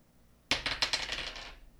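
Dice clatter across a hard tabletop, a quick burst of rapid bright clicks and rattles that starts sharply, tumbles for about a second, then settles and stops, fairly loud.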